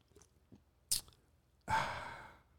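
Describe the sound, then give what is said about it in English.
A few soft mouth sounds and a short sharp burst of someone sipping a Monster energy drink, followed by a long, breathy, satisfied exhale that slowly fades. “I'm gonna take a sip of my favorite drink.”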